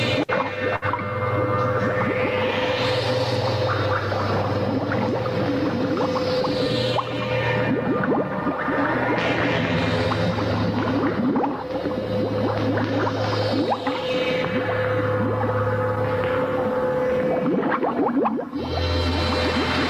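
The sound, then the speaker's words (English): Eerie underwater film score: a steady high drone over pulsing low bass notes, with swelling, sweeping washes and bubbly, gurgling textures, continuous and fairly loud throughout, no voices. “Yeah, but regardless, they dive down and we get more of this underwater music, which is so good.”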